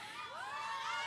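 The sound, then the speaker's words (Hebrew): An audience at a live performance cheers steadily for about a second, a dense wash of voices with high rising whoops and shouts cutting through, sustained and fairly loud with no talking over it. “קהל רוצה אותו איתו.”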